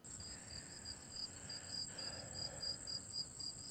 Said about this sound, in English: Because after she talks, I keep hearing crickets.